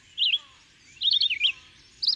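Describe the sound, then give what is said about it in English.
A red-eyed vireo sings short, warbling phrases, three bright bursts separated by brief pauses, along the line of a forest, against a quiet background. “When 20 yards distant, I hear all along the line of the forest the incessant warble of the red-eyed vireo.”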